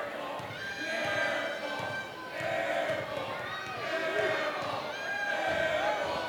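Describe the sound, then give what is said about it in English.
At a girls' basketball game, the crowd chants "air ball" in loud, repeated sing-song swells of many voices as a freshman shoots free throws, each chant rising and falling over a steady rumble of crowd noise. “Freshman sinks it as the crowd chants air ball.”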